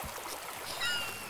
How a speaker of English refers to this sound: Here we go. A river runs through it.